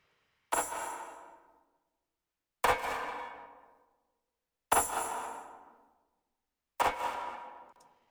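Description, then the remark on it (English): Four tambourine hits from a track of layered tambourine samples, processed with reverb, Lexicon Room reverb and Isotope Trash distortion, spaced about two seconds apart, each a bright metallic jingle with a sharp attack and a reverberant tail that fades out before the next, with no voices. “This one is like a track of a bunch of tambourine samples.”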